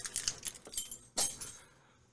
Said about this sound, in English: As I make a lot of noise with my keys.